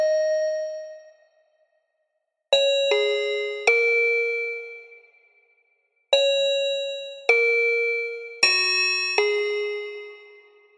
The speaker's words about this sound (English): I particularly enjoy what happens when you make it super, super low. You've got something which Reason calls the toy piano, which is this like janky, horrible, ringing metal sound.